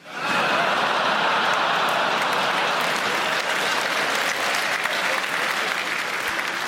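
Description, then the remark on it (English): Loud, sustained applause from an audience, with dense, hearty claps rolling steadily throughout the whole stretch and no speech over it. “Some quite beefy claps there, weren't there?”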